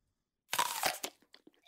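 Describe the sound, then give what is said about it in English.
A loud crunchy bite into an apple, followed by a few softer, scattered chewing crunches as the mouthful is worked. No talking. “Eating an apple.”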